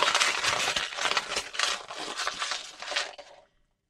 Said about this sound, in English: Crinkle up your paper.